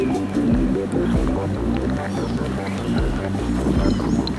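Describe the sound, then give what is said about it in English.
Faint bird calls chirp intermittently in the distance, with thin high whistles rising over a loud, steady low rumble of outdoor ambience near a wetland. “Okay, I think that's a teal. Cardinals. And that yellow throat.”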